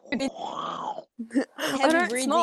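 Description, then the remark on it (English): A voice mimics a loud, rasping snore, one long rough inhaled rumble followed by a short snort, then breaks into animated vocalizing or laughter. “I don't snore. I breathe heavy, but I don't snore.”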